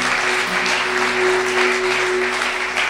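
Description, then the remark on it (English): An audience applauds steadily in a clap of praise and thanks, a dense, even wash of many hands clapping at once, with a low sustained hum beneath it and no voices standing out. “Now let's give Him a big clap of praise and thanks for what He's done.”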